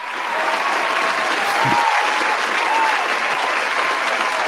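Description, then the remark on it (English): A crowd applauds for wrestler Finn Balor. The dense clapping fills the whole stretch at a fairly loud, even level after a brief rise at the start, with no voices standing out. “Round of applause for Finn and his pantalones.”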